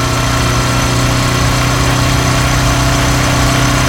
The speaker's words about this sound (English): In the distance, she hears the sound of a motorbike.